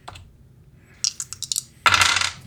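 Real dice rattle and click in a quick burst of sharp hard taps during a tabletop game, then clatter noisily onto a table for a moment before settling. Fairly loud, with no voices.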